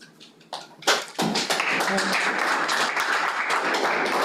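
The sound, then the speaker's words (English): An audience at a meeting breaks into applause: a few scattered claps at first, then a dense, steady wash of many hands clapping that stays loud to the end, with a faint murmur of voices underneath. “You guys, your clapping isn't helping.”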